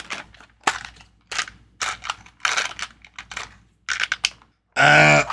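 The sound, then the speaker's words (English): Real dice, rolled for a percentile check in a game, clatter and tumble across a table in several quick, irregular bursts of sharp clicks, ending in a louder, denser rattle. Fairly loud, with no voices. “All right, let me do a thing because I have actual dice.”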